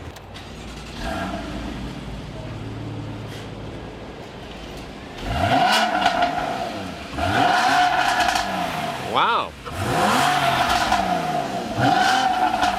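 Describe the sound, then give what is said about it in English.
A mid-engine sports car engine is started and idles steadily, then is revved hard several times, each blip rising and falling in pitch, loud, with a brief spoken exclamation between revs. “You want to fire it up? We'll give it a little listen.”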